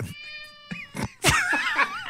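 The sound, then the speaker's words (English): A cat meows insistently for attention after already being fed, a few short clipped calls followed by a long, loud, wavering yowl, with no one talking. “Sit here and listen to Sully Mew for the next 3 minutes.”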